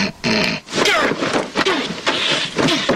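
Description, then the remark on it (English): Loud, harsh snorting as someone forcefully clears their sinuses, several rough, piggish bursts in quick succession with brief gaps between them, and no talking. “If I don't clear my sinuses, I'll snore all night.”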